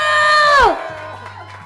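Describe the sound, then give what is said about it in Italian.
An audience cheers for a music maestro, with one loud sustained whoop that holds its pitch and then slides sharply downward, followed by softer, scattered crowd noise and clapping. “Un applauso al maestro Fulvio Renzi!”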